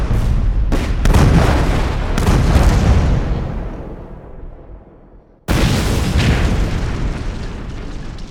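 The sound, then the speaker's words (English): Loud, booming artillery shell explosions hit in quick succession, each deep blast rumbling and fading before another sharp detonation erupts. No voices are present. The rounds are fired over and over at Belgian positions. “Over and over the rounds came, deafening explosion after explosion, terrorizing the Belgians.”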